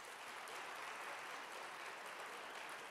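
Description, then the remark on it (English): A crowd claps steadily for the full three seconds, those who believe barbecue is beef voting by applause; a dense, even wash of many hands with no voices standing out above it. “All right, so those of you who believe barbecue is beef, if you would let it be known with your applause.”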